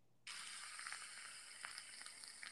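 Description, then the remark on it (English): A steady, bright hiss of Squirt soda fizzing as it's poured, starting abruptly and staying dense with tiny crackling pops throughout, fairly loud with no voices. “It sounds more fizzy than fizzy water. Can I guess a pop? It, guess what flavor? Cherry Galaxy Coke.”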